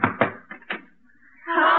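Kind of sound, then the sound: household object, knocking on a door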